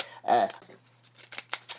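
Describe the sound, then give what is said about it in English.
A short vocal exclamation, then a few sharp, crunchy clicks of a paper punch biting through paper pictures, spaced irregularly. “Oh, yeah, this feels kind of good, just clicking it.”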